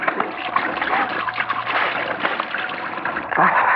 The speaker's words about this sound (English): Better splash some water on my face.